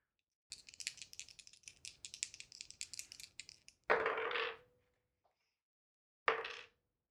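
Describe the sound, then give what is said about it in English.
Many dice being rolled for damage in a tabletop role-playing game clatter and rattle quickly for a few seconds, followed by two short, louder bursts of dice tumbling onto a hard surface, with no talking. “How many dice you gotta roll over there? I gotta roll a lot.”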